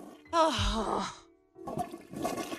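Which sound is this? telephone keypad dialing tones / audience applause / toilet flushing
toilet flushing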